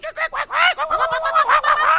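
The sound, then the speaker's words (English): A person imitates a duck call: a few short nasal quacks in quick succession, then a longer run of loud, raspy quacking with no pauses. “He had me duck calling yesterday.”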